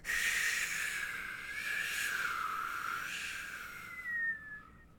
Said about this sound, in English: Wind in chinks of rock.